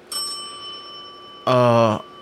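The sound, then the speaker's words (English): A single bright bicycle bell ding rings out, its clear tone lingering and slowly fading, followed by a short burst of a loud voice. “I've even got my own shameless self-promotion bell.”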